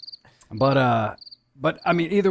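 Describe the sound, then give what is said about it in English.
Short, high-pitched cricket chirps sound in brief bursts at the start and middle, alternating with louder, drawn-out voiced tones that sound like someone humming or vocalizing. “No, that's when I just crickets. I'll cricket myself on that one.”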